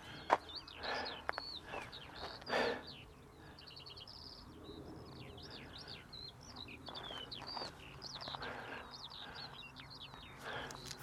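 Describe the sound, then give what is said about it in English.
A skylark pours out a continuous, high, rapid warbling song that carries on without pause over fields in spring, with a few soft rustling bursts of wind or handling noise. “That's my favorite spring bird, I think. The skylark.”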